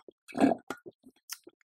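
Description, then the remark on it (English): A quick sip and swallow of water: a soft slurp followed by a few wet mouth clicks and a gulp, quiet and brief, with no talking. “And I'm going to take another sip of water.”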